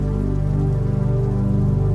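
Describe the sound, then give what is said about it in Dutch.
Steady rain pours down onto a hard surface on a stormy night, a dense, continuous patter with a deep rumbling undertone, fairly loud and unbroken throughout, with no voices. “Je verwondert je om de perfectie van de regendruppel in het idee dat één druppel als onbelangrijk zou kunnen worden gezien in vergelijking met een stormachtige nacht als deze.”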